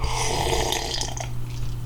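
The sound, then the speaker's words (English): Someone sips a power coffee made with cream and beef dripping, a continuous wet slurping and gulping noise lasting about two seconds, fairly loud and steady over a low hum, with no talking. “just have a quick sip of my old drink here.”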